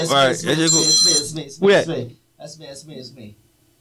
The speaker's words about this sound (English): Oh, that's your phone, my phone. Who phone is that? Oh, that's me.